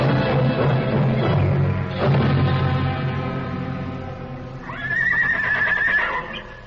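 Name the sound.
horse neighing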